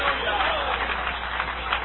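A church audience applauds in praise of the Almighty in a steady, dense wash of clapping that continues throughout, mixed with voices calling out over it. It sounds full, with no pauses.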